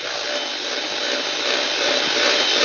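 A steady, continuous motor whir with a bright, hissy buzz as an electric hand mixer's thick beaters are moved around whipping Dream Whip topping until it forms peaks, holding an even loudness that swells slightly toward the end, with no talking.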